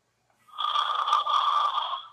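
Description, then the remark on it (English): A single loud, drawn-out snore with a harsh, rattling rasp, lasting under two seconds, with no one talking. “Oh my god, I'm getting a migraine from somebody snoring too loud.”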